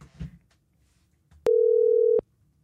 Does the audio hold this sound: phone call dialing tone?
yes